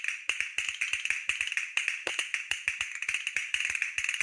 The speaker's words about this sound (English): Castanets.